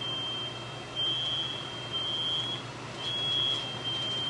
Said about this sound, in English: All right, let's see if we can get the smoke alarms to come go off.